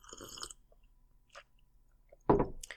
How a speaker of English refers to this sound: I'm going to take a sip of coffee here. Hold on.